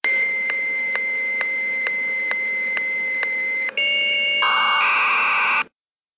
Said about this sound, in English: And that's assuming, of course, that mom didn't pick up the telephone, because these devices, you know, they did their very noisy handshaking thing. Why don't I insert a sound of modem handshaking right about here?